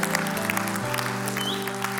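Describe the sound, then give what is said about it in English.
Hands clapping in a steady, dense stream of sharp claps that continues throughout, mixed with a low sustained tone underneath. No voices stand out. “I'm going to clap myself.”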